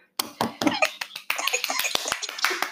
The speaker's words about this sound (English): I don't know how to do the hand clap on here, so. All right. Snaps.